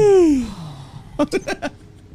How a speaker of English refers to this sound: We're just out here just like awkward breathing into the mic so hard.